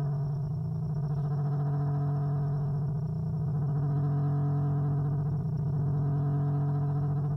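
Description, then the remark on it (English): Warbling electronic tones drone and waver continuously, like mechanical whale calls, with a strong low hum and layered wobbling harmonics that stay steady and fairly loud throughout, with no one speaking. “Okay, now it sounds like a mechanical orca has swum up next to me and is trying to communicate in her alien language.”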